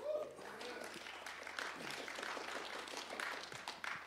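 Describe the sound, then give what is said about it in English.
A church audience applauds a pastor on getting her credentials with the Western Ontario district; steady, dense clapping fills about four seconds at an even, moderate loudness, with a few voices faintly mixed in. “For all of you that didn't clap, you don't know how challenging it is to get your credentials.”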